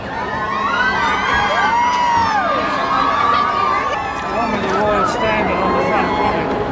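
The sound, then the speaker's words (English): A large crowd at Sydney Harbour on a lovely day cheers and shouts continuously while waiting for the Duke and Duchess of Cambridge to arrive, with high excited voices and whoops rising over a dense, steady wash of babble. The loud roar holds without a break. “Yes, and we've got someone else arriving now, and we've got crowds everywhere as we're at this lovely day in Sydney Harbour, as we're waiting for the Duchess and the Duke of Cambridge to arrive.”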